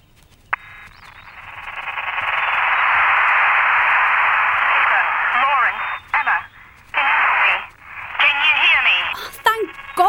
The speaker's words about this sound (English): You sound like you're on a really bad phone line.